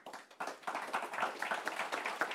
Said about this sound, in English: So we'll wrap up the first panel there. Thank you so much. How about a round of applause for our panelists?